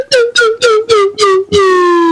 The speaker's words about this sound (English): Sent a little note on the side saying he loves my slide whistle, and that's the real reason he's giving us this money.